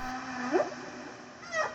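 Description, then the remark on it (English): Whale song from a whale singing at a frequency of 52 hertz: two rising, moaning tonal calls, one near the start and one near the end, over a steady low drone with no talking. “This particular whale was singing at a frequency of 52 hertz that no other whale species was known to sing at”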